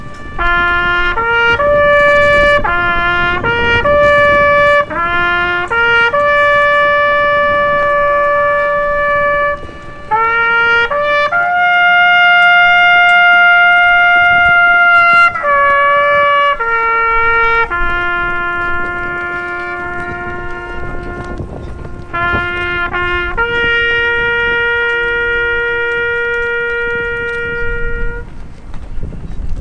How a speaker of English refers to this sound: Taps with echo if we could.